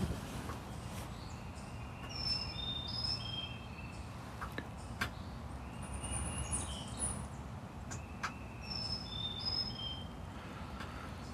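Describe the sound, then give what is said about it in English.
A bird gives short, high whistled calls in several spaced bursts in winter woods, over the steady low rumble of a jet firing up in the distance, with occasional sharp clicks and crunches; recorded on a phone. “I hear a bird sound.”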